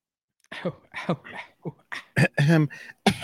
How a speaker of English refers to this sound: Well, let me clear my throat. Excuse me.